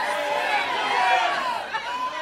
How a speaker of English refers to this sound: I can't hear if you all yell at once.